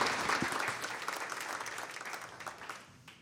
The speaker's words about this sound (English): So can we welcome her with a One Fellowship round of applause? Perfect.